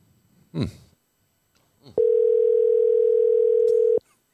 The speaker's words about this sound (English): See if he answers the phone. Why wouldn't he answer the phone?